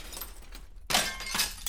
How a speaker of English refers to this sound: Precious items break and crack, and she gets more and more aggressive with the artifacts she comes across. Nothing is spared. What was once sacred now shatters into 1,000 tiny pieces.